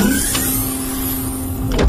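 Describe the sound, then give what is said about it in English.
A door slides open with a steady mechanical whir, a motorized hum holding one pitch for nearly two seconds before a brief thump as it finishes. “The door is opening up for us.”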